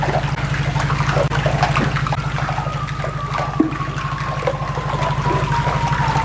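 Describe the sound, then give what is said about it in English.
Underwater churning of moving water with scattered knocks and clatters of rocks shifting, set against a loud, steady low mechanical drone from a generator that persists throughout. “So you hear the generator, you ship, hear the generator, the water moving rocks around.”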